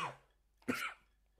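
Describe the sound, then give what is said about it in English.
A single sharp cough bursts out after a short pause, with a fainter breathy sound trailing at the start; no one speaks. “sorry, did I cause you to cough there with the shit?”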